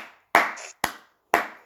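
Three sharp, evenly spaced claps ring out in a steady rhythm, each a loud crack that fades quickly, with a trailing bit of a previous clap at the start and no talking.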